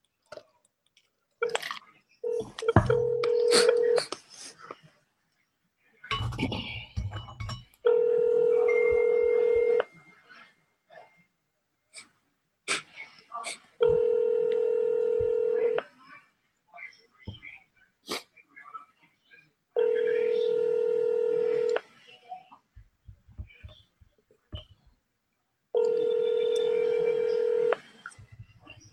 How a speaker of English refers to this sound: She obviously not gonna pick up the phone